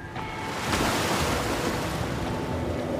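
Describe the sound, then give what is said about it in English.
Ocean waves surge steadily while gusting wind roars across the microphone, a loud, continuous wash of surf and blustery air with no voices. “Gusts of wind hit the sails, and the ship made its way around the barrier rocks into the Sea of Mortem.”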